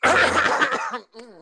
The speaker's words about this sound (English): Oh, Lord. Oh, y'all got a cold. No, I don't. I just had to clear my throat. It's a definite cold trying to creep up about me.